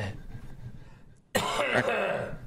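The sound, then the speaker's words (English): After a low, quiet murmur and a brief silence, a harsh, loud hacking cough bursts in, rasping for about a second with a second rough push near its end. “Take some cough syrup, for fuck's sake. Just hacking away like a fucking coyote.”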